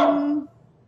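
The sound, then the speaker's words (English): A single short dog bark rings out, sharp at the start with a tonal, slightly drawn-out body, followed by quiet background noise. “Nope, there's my dog.”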